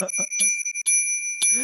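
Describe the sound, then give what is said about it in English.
A small bell is struck four times in quick succession, each strike adding to a bright, sustained ringing tone that hangs throughout. A voice is briefly heard at the start. “can you ring the bell like 4 times, please?”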